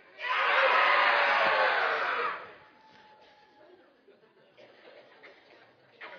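A group of children shouts together in one loud, sustained burst lasting about two seconds, then it cuts off abruptly, leaving only low, scattered murmuring.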